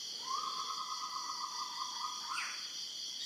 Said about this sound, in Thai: เนี่ยมันเสียงนกเกิดขึ้นอย่างเงี้ยมันก็จะได้ยินแต่มันไม่แปลมันรู้แต่ว่าไม่รู้ว่ารู้อะไรมันก็ได้ยินอย่างเงี้ย